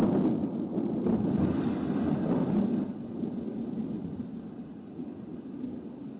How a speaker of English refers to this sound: I looked out the window, and the sky grew darker and darker. The thunder seemed to make the earth shake.